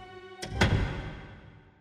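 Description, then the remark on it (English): A door swings shut with two quick knocks, a sharp click followed by a heavier thud that rings out and fades, over a faint, steady tonal hum. “The door closes.”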